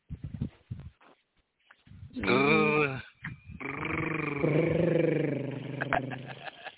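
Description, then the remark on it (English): On the Hilltop Radio Show, a person imitates a cat's purr with a loud, rumbling, growly hum that rolls on for several seconds and wavers in pitch, after a few short breathy sounds. “And if you want to hear more of my purrs, make sure y'all tune in tonight.”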